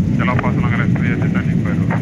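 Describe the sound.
A helicopter flying over Long Island wheels around: its loud, steady engine and rotor roar drones continuously, with a muffled voice faintly audible beneath the noise.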